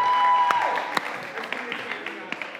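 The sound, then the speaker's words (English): A crowd applauds the seniors in a dense, steady wash of clapping that slowly thins out, with a few sharper individual claps and faint voices mixed in. “Let's give our seniors another round of applause.”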